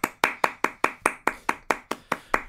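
Sharp, steady clapping from what sounds like a single pair of hands, about a dozen crisp claps in an even, brisk rhythm with no voices.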